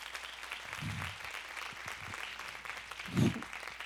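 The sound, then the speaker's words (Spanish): A crowd claps together as applause for God, a steady, dense patter of many hands, sustained throughout, with a couple of louder low thumps or shouts rising briefly above the applause. “Dale un aplauso a nuestro Padre.”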